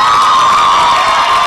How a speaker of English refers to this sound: your friends are cheering me on.